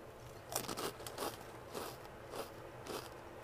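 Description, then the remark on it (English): Crisp, crackly bites of Cape Cod kettle-cooked salt and vinegar potato chips, a series of sharp crunches repeating roughly every half second with softer chewing between, fairly loud and with no talking. “These salt and vinegar chips are so good. They're the Cape Cod ones, and they're kettle cooked the best way.”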